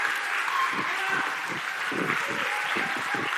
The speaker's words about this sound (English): And just to set the mood, I want you guys to cheer and clap for me as because this is what she told everybody to do. Come on, get going. Like, come on, folks, let's get in.